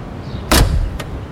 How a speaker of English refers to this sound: That huge stretch limo is pulling up right to the front of the theater. Ooh, I see it. I wonder who's inside. The car door is opening.